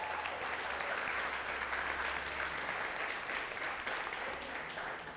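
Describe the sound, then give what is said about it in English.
A room full of people claps steadily to congratulate a couple who just got married, a dense, sustained wash of applause that holds at a fairly even level throughout, with no speech over it. “If you give a round of applause.”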